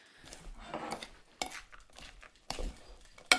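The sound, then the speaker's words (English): An egg being whisked into stout and rum in a jug: quick, irregular scraping and clinking strokes of a utensil against the sides, with a few sharper knocks, fairly loud and without any voices. “Mum has poured the stout and the rum into a jug, and now she's whisking the egg.”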